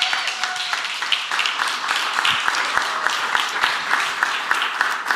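A crowd applauds steadily, a dense wash of many hands clapping at a constant, fairly loud level with scattered sharper claps standing out, and no voices heard.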